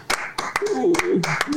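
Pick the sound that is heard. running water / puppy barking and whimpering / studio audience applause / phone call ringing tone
studio audience applause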